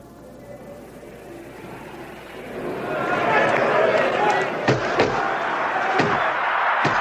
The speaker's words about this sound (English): Robinson hurting LaMotta. He's hurting him now. He has LaMotta on Clear Street holding on. Well, certainly that was one of the most damaging evidences of punching that you have seen in recent years.